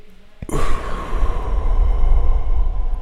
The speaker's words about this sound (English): So what I'll do is I'll take a deep breath through my nose.